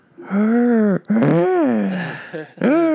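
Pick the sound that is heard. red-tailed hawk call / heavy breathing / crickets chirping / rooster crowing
heavy breathing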